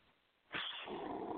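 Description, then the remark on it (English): A pet bird lets out a harsh, raspy growl into a phone, starting suddenly after a brief quiet moment and holding loud and steady for about a second. “Evil bird growl.”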